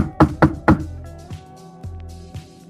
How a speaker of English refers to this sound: So yeah, heading over to Magpie's and Emery's. He's knocking on the door politely.